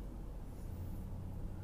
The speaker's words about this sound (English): Current speed, 17 miles an hour. A little bit of traffic for a minute, but it's also, for a minute, it's not raining.